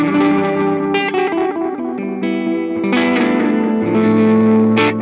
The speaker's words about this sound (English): And you can do the oscillation stuff, which is nice. I like to do that a lot during the set. So, a nice analog delay. You know, the Line 6 delay was modeled after this. The DL4? Yeah, on the DL4, it's the DM3 delay.